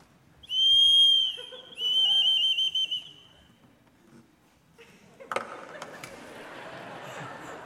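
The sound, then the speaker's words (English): A shrill whistle imitating a bird mating call sounds in two close bursts, the first steady and piercing, the second warbling and trilling, followed by quieter rustling and clattering. “This is a whistle.”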